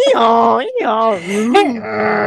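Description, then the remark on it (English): A person mimics a goose with a series of loud, nasal, honking vocal sounds, three or four drawn-out bleating calls with wavering pitch, run together with brief breaks. “They're like, did I just hear a goose?”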